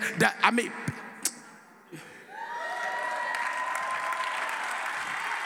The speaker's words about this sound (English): Come on, give God a clap offering.